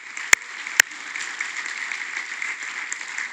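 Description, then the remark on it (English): An audience applauds local military personnel steadily with a dense, even patter of clapping, punctuated near the start by two sharp, louder claps. No one speaks over it. “I think we can give them a round of applause.”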